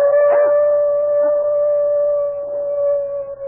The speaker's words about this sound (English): What is it? Your dog. He's howling about something.